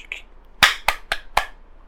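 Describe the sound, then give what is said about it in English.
Four sharp hand claps given as applause, in a quick, even rhythm, loud and crisp against near silence, with no talking. “I will applaud you. Hold on. Let me make hands.”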